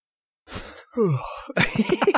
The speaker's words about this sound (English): That's a genuine yawn from this episode in general.